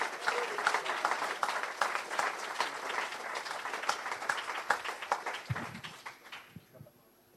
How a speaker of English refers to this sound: So give him a round of applause as he comes to the stage.